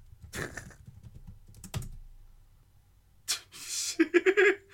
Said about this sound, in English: He was typing so furiously I could hear it.